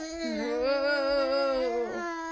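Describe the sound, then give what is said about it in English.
A young child shouts in the background while their mother is filming, a long, loud, high-pitched vocal cry held steadily for about two seconds before breaking off with a brief wavering sound at the end. “Mummy's trying to film this podcast and you're shouting in the background.”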